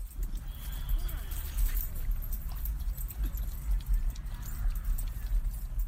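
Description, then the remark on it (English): Outdoor dog park ambience at a park covered in wood chips: a steady low rumble with scattered clinks, jingling tags and light scuffing footfalls, plus faint indistinct voices mixed into the background hiss. “Here are some wonderful park sounds for you guys while I read an excerpt of my observation notes.”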